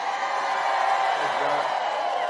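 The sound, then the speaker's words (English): Thousands of supporters at a President Trump rally in Winston-Salem, North Carolina, on a Tuesday night cheer and chant "We love you", producing a dense, unbroken roar of many voices that stays loud and steady for the whole couple of seconds. “President Trump was momentarily overwhelmed by chants of "We love you" by thousands of supporters at a rally in Winston-Salem, North Carolina, Tuesday night.”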